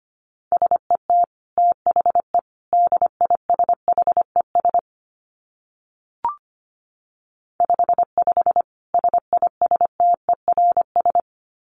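A single steady, mid-pitched tone keys on and off in quick Morse code dots and dashes at about 25 words per minute, pausing briefly around a faint click before the sending resumes.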